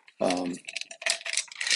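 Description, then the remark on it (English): Two full sets of dice (D4, D6, D8, D10 percentile, D12, D20) rattle and clatter inside plastic test-tube-like tubes, a busy series of sharp clicks shaken for a couple of seconds, with a brief vocal sound near the start. “They're gonna make these like kind of interesting test tube-y things.”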